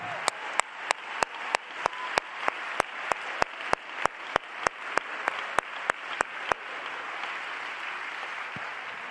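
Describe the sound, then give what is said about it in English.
An audience at a church service claps hands together in a steady, even rhythm, about twenty sharp claps over a wash of crowd noise, then the clapping stops and a low murmur lingers. “You ought to clap your hands unto the Lord.”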